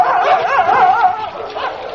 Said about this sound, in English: Look, sir, can't you control the dogs? Of course I can't. The horrible hounds are afterwards, and you can't control them. They'll tear us to pieces.